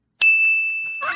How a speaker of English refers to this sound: Okay. No more bells. No dings. They've been outlawed on my show. Why?